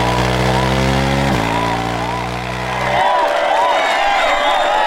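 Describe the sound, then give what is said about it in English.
A motorcycle engine drones loudly with a steady low rumble, steps up in pitch as it revs and speeds toward a jump takeoff ramp, then cuts away abruptly, leaving a busy crowd murmuring and cheering in the background. “After taking four practice runs to gauge his speed and acceleration, Robbie gunned the engine and sped toward the takeoff ramp.”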